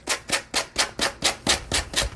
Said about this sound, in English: A little more sanding because of the Mod Podge, but not bad. And you could trim it with scissors too. That's another way to get that off of there.